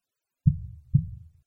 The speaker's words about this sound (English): But for many minutes, the heart beat on with a muffled sound. This, however, did not vex me. It would not be heard through the wall, and at length it ceased.